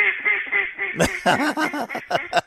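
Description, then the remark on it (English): A duck quacks loudly in a quick run of six or seven nasal quacks, preceded by a drawn-out buzzy call, with no talking. “It's still duck season.”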